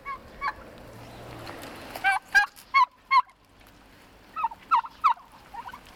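Several hand-raised turkeys on a farm gobble in short, rattling bursts: a few scattered calls, then a cluster in the middle and another flurry near the end, with no one talking.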